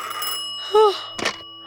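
A telephone rings once, a brief bright tone standing out against a quiet background, followed moments later by a short clunk, as if the receiver is lifted: a call to actress Phyllis Coates in the early hours of June 16th.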